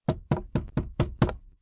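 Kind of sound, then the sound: impact, knocking on a door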